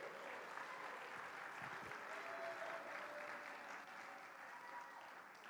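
A crowd claps steadily in sustained applause for young Boy Scouts coming up on stage, a dense, even patter of many hands lasting several seconds with no one speaking over it.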